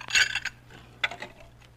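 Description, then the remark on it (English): Dishes clinking and clattering as they are handled while cleaning up Jack Benny's house the morning after a party: a loud cluster of bright, ringing clinks, a short pause, then a second, quieter burst of clatter. No voices. “I was too tired last night to get all these dishes”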